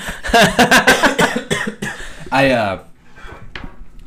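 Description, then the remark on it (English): A burst of harsh, rapid coughs, several quick hacks in a row as someone with a cough clears their lungs, then a rasping vocal sound followed by quieter breathy noises. “Clearing the lungs? Yeah.”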